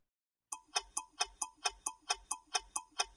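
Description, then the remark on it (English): A clock ticks steadily, about eleven crisp, evenly spaced ticks in quick succession after a brief moment of silence, with no voices. “Clocks tell us what time it is, and we've improved the accuracy of clocks to the point that a strontium atomic clock loses maybe a second only every 15 billion years.”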